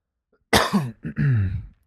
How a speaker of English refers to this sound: I'm going to keep all your coughs in, by the way. I just hit the bong like 3 or 4 times.